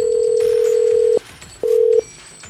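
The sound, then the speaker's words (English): A phone line rings out as radio station QDR calls its Cash Cow grand prize winner: a steady, low electronic ring tone sounds for about a second, pauses briefly, then starts again, with no one talking. “Let's call her up.”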